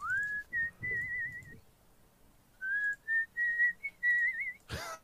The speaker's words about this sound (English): Just whistling and driving.